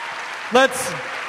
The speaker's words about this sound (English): Huge round of applause.